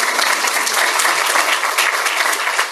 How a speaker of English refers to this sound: You guys can applaud for that.